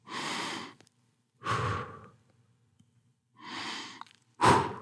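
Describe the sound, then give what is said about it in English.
A voice pronounces the letters YHWH without vowels, producing four breathy, aspirated sounds like slow in-and-out breathing: long airy exhales and inhales, fairly soft, separated by short silences, the last one sharper. “When pronounced intervening vowels without them, it actually sounds like breathing.”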